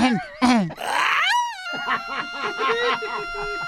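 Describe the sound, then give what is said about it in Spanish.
A man lets out a loud, drawn-out vocal shout that sweeps up and down in pitch, then settles into a wavering, siren-like wail, a voice imitating an alarm to clear the way through heavy traffic, as if riding in a police car. “imagínese que vamos en el carro de la policía y hay mucho tráfico y yo me aviento este grito para abrir el camino.”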